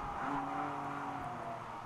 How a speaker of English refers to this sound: There goes number 39 car making up a position. I think that's on the 82. BMW, I think.